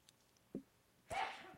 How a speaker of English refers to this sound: Bless you.